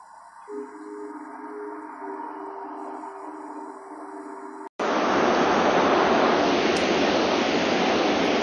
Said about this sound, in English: The sound of the waterfall. Snoqualmie Falls. That is the waterfall, the waterfall.